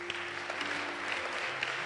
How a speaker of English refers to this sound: Hallelujah. Put your hands together.